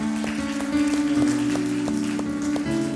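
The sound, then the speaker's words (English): An audience claps hands after a prayer, a steady, dense wash of applause that lasts the whole moment, with sustained keyboard chords ringing underneath. “Well, before, if you've got a hand clap, we could do that.”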